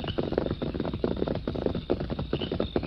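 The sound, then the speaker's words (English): Horses' hooves pound in a quick, steady galloping rhythm as the Lone Ranger and Tonto ride together through the night, with no voices over the continuous clatter. “A few minutes later, the Lone Ranger and Tonto were riding through the night.”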